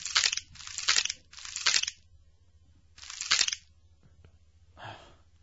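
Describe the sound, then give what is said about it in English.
Loud crunching bursts like teeth grinding while chewing, four rough clusters spread over several seconds with brief pauses between, followed by a softer rustle near the end. “Just chewing. His little teeth grinding.”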